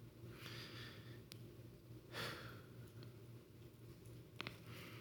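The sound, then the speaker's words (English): Slow, soft breaths drawn in and out as a person sits still in quiet, listening to their own breathing, with a few airy swells and faint clicks over a steady low hum. “It's learning how to sit still and do nothing so that you can hear from a very practical level your own breathing.”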